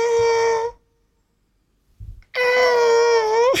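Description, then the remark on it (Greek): A cat yowling sound effect of a cat being stepped on: two long, loud, high-pitched wails with a short pause and a brief low thump between them, the second ending in a quick upward bend. No talking. “Αυτό είναι γατί που το πατήσανε.”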